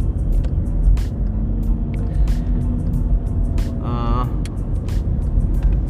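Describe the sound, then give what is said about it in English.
Steady, loud low rumble of a car driving home on a road, heard from inside, with a brief high whining squeal partway through and faint clicks scattered over the constant road noise. “It's just going to be me babbling on while I'm driving home.”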